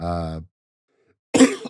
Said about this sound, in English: excuse my cough.